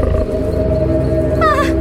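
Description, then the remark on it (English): A coyote vocalizes in the woods: a deep, steady rumbling growl, then near the end a brief high, wavering yip-howl rises over it. No one speaks. “Coyote.”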